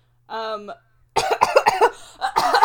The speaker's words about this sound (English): My mic picked up your cough from my headphone. That is so stupid. And I saw the little line go boop doop doop doop. It's loud. I'm a loud cougher.